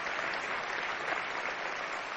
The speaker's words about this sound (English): And we've already celebrated that, but it's just an exciting day for us as a church. So, you know, we can just clap and celebrate that one more time. That'd be great.